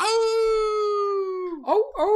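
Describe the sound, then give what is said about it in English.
A person's voice imitates a wolf howl: one long, steady, slightly wavering note that slowly falls in pitch, then breaks into two short, rough yelping rises and falls. “It howls at you. I can do that too.”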